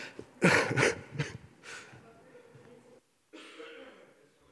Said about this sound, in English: I'm going to blow my nose. It's going to be beautiful.